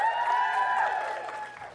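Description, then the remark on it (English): A crowd cheers and claps at once to vote for the film Elf, a dense wash of whoops and applause that holds steady for a couple of seconds before easing off slightly. “If yours is Elf, go ahead and cheer now.”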